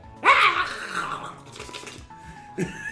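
A dog lets out a loud growl that swells suddenly and then trails off into lower rumbling, with a brief tonal hum and another short snarl near the end.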